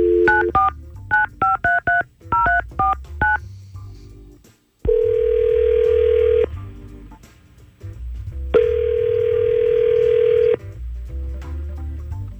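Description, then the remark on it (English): A quick run of touch-tone dialing beeps, then an outgoing call's ringback tone sounds twice, each long steady ring separated by a pause, clear with no talking. “Okay, let's call right now.”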